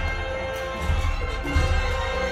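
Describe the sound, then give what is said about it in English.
Orchestral chimes and bells ring out in sustained, shimmering tones over a dense, dark musical backdrop, with deep bass drum thuds landing twice beneath them. No one speaks. “You've got the chimes, the bells, ringing out.”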